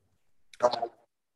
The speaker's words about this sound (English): Of course, I had to cough as soon as I had to talk.